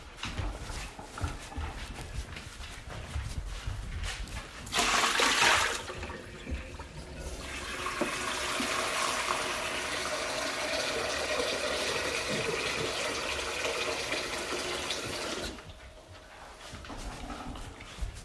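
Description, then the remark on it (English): Tap water runs steadily into a dog's bowl for several seconds after a brief splashy gush, fairly loud, then stops, leaving light background clatter; the dog is being given more water at dinner time. “Wolfie, come and eat your dinner. I'll give you some more water.”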